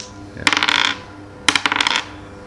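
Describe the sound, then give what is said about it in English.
Two quick bursts of dice clattering during a tabletop role-playing game, a perception roll that comes up 70, each a rapid string of hard little clicks and rattles that settle after about half a second. No one speaks over the rolls. “And I've just rolled 70.”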